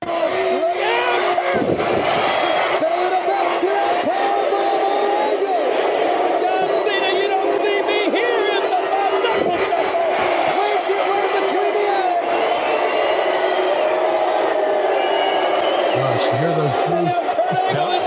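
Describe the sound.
A large arena crowd at WWE Taboo Tuesday in San Diego roars and cheers continuously during a triple threat match with Cena, Shawn Michaels and Kurt. A dense wall of shouting voices, with rising whoops and chants that swell and hold loud throughout.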